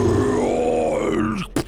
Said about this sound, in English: A large, terrible, echoed roar.